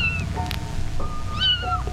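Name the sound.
kitten meowing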